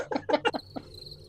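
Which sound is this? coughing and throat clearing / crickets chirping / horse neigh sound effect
crickets chirping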